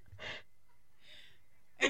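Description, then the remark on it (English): A voice imitates heavy breathing, mimicking a stepsister character played by Emily Perkins in Another Cinderella Story: three breathy, hissing huffs, fairly loud, with the last one sharpest. No words are spoken. “She's like breathing heavy.”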